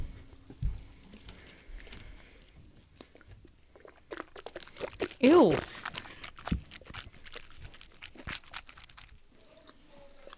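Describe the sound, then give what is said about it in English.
Wet crunching and chewing of chicken wings, irregular bites and mastication sounds, with a brief exclamation and some breathy vocal noises mixed in. “How are you eating more?”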